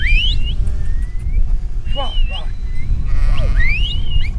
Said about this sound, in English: a flock of sheep were being brought into pens on the slope of the mountain by several shepherds and their dogs